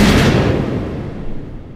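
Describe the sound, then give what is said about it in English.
A loud blast bursts out at once, like a bomb or gunshot sound effect, then trails off into a long rumbling, crackling decay with no voices. “I was waiting for the gunshots to start going off. I thought we was dropping the bombs, like flex on them real quick.”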